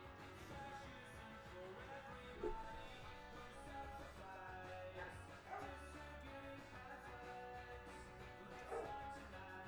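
A dog barks a few times at spaced intervals, each short bark cutting through a dense, steady bed of music playing throughout.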